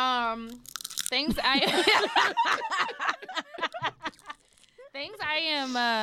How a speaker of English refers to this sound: Sorry, I'm gonna just chew that into. I've been chewing in the mic.